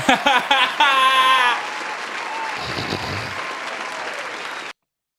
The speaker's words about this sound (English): Round of applause.